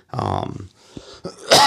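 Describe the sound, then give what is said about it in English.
A raspy, lingering dry cough with a throaty, voiced start, followed by a short pause and a sharper, harsher hack at the end. “And I've been using this Flonase thing and that usually helps out with this dry cough, but it's just not touching it this time.”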